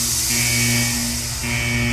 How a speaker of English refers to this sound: The door is closing behind me, people.